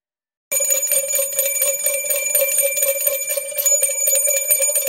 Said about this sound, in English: We are ringing the bell for a couple of reasons.